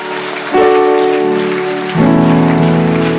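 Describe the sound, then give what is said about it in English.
A church audience claps as a clap offering in a dense, steady wash of applause, loud throughout, over sustained organ-like chords that step up to new notes twice. “Let that clap offering increase, because God is going to repeat himself.”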